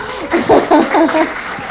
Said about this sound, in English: Do you guys like what you hear? Yes. Okay. Can we have a round of applause if you like what you hear?